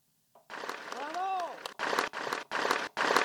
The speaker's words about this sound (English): Do you want to give the applause button?